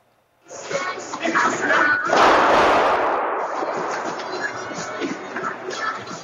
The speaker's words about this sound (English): That is security camera footage. People running for their lives in panic as they heard gunshots.